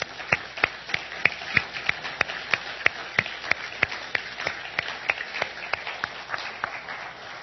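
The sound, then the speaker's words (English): At a church service, an audience applauds mothers steadily, a dense wash of clapping with one set of sharp, evenly spaced claps standing out in a quick rhythm, moderately loud throughout with no voices. “And moms, today we applaud you, and we want to do it again.”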